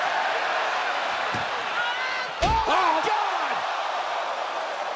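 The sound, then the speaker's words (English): A single loud, sharp steel-chair strike by Charlotte on Ronda Rousey at WWE Survivor Series cracks out midway over a constant roaring arena crowd, followed by a rising swell of reaction from the crowd. “And now Charlotte has a steel chair.”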